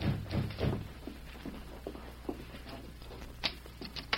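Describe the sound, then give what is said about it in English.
Three quick, evenly spaced knocks with a dull, low thud on a hotel room door at about 7:30 at night, followed by faint scattered tapping and shuffling. No one speaks. “It was about 7:30 that night when Lolita heard a knock at her hotel room door.”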